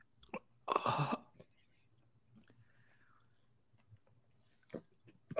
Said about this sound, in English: Oh my god, I didn't realize that swallowing was going to make it so much worse.